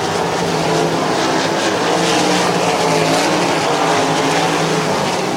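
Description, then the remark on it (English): A loud, sustained roar of sprint car engines at full throttle during the Sprint Car Spectacular feature race at night, as winner AJ Flick heads down the backstretch through turns three and four; a dense, steady drone that hardly varies for several seconds, with no talking audible over it. “And he has gotten the job done here tonight as he makes his way down the backstretch through turns three and four.”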